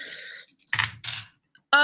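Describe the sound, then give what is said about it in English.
A quick series of small hard clicks and clatters as four dice tumble across a tabletop, settling after about a second and showing two ones, followed by a brief tonal sound at the end. “I rolled two ones. So one pair.”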